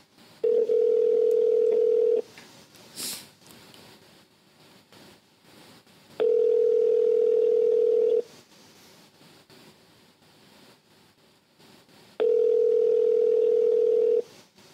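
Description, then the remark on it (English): A phone ringback tone on an outgoing call to McDonald's sounds three times, each steady tone lasting about two seconds with roughly four-second gaps of quiet line noise between, heard as if through a handset. “It's ringing.”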